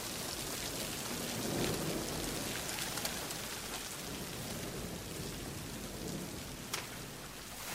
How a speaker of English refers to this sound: I sit and let the rain splash against my hands.